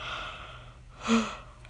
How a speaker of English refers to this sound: Yawn. Oh my gosh. I'm so tired already.